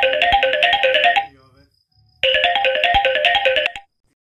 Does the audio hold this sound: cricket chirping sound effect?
no